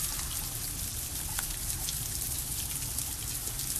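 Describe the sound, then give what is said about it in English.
Steady, dense pattering of tiny ice pellets falling all around in the cold, a continuous hiss of tiny hard impacts with a few sharper ticks standing out, fairly loud, with no voices. “Look at all this ice pellet. Is that called pellet? It's a little tiny little thing.”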